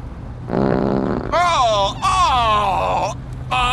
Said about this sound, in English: Oh, it's just a little flatulence. Oh, a little flatulence? An elephant in the back seat and it wouldn't smell that bad.